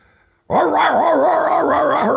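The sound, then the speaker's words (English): A person imitates excited drug-sniffing dogs on a plane with a sudden, loud burst of yipping and whining that starts abruptly and keeps going, wavering up and down in pitch like agitated sniffer dogs. “So they put drug dogs on the plane. Well, of course, I smoke pot on the plane, so the dogs are.”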